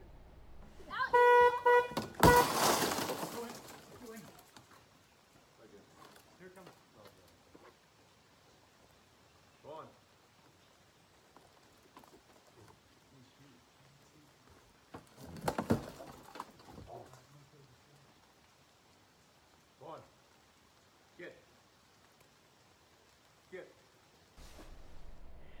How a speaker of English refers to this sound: And he was not prepared for what happens seconds later with this bear. So here's how this bear decides to Kool-Aid his way out of the car.